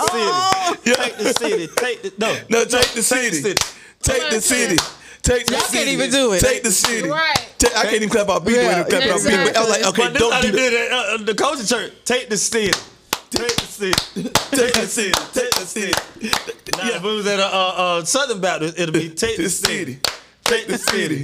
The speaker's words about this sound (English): Stop, because they clap behind the beat.